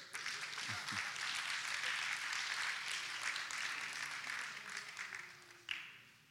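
A church audience claps steadily for a pastor and another man called up by the preacher, in a dense, continuous wash of applause, with a brief voice underneath near the start; the clapping holds for several seconds, then thins out after a sharp final clap.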